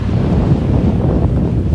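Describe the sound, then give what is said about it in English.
Steady rumbling wind buffets the microphone while ocean waves wash onto a beach in the background, a continuous loud low roar with no distinct breaks and no voices. “Just going by the beach, listen to the waves.”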